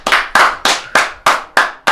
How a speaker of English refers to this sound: Let's give a round of applause for Haley Steinfeld.